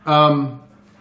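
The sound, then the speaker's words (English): A dog lets out one loud, drawn-out whimpering bark, a tonal cry lasting about half a second before fading into quiet background. The dogs are agitated because it is about to rain. “My dogs are going nuts because it's about to rain.”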